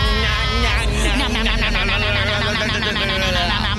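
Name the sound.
goat bleating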